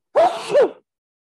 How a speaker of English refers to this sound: Sorry, y'all. I was sneezing.